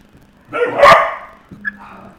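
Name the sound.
dogs barking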